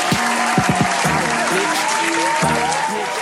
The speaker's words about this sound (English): Round of applause.